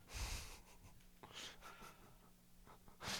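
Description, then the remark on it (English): Heavy breathing right into the microphone, with noisy inhales and exhales rasping and snorting in a broad airy hiss, swelling loud at the start and again at the end. “Oh, stop trying to breathe in, breathe out.”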